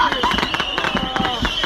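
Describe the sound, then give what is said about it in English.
Fireworks going off inside a closed car trunk, a fast, dense stream of sharp crackling pops and bangs that keeps going steadily without a pause, fairly loud. “But the fireworks are still happening inside the trunk.”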